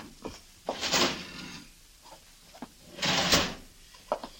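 A left-hand desk drawer slides open with a wooden rumble, then after a short pause slides shut again, with a few small knocks and clicks around the two movements.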